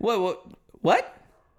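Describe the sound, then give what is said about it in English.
A dog barks twice, two loud, tonal yaps about half a second apart, the second sharper and rising in pitch, followed by faint low rustling and quiet. “If someone doesn't shut that fucking dog up, I swear to God.”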